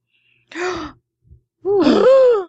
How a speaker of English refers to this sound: Revelation. I'm going to be gasping a lot.